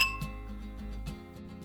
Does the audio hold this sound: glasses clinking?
yes